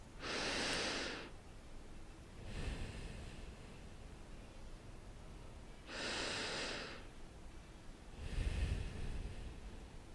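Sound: deep breathing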